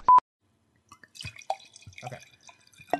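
wine being poured

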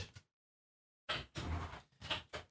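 car door opening

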